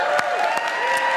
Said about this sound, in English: It's only downhill from here, guys, if you're clapping this early.